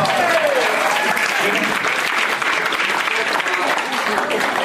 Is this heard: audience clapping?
yes